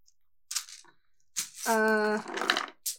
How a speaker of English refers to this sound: Hold on. I'll roll a die.